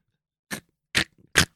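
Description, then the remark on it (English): Three crunchy, crisp button presses click in an uneven rhythm, fairly loud, with silence between them and no voices. “the fucking buttons are so crunchy.”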